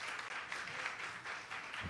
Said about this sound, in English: Didn't this praise team do an amazing job? Can we give them a hand clap today? Yes, we can do better than that. Come on. Yes.